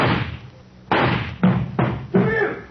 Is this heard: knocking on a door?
yes